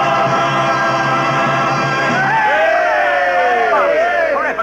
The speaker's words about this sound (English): The Dodger team runs out on the field. The stands break into a cheer.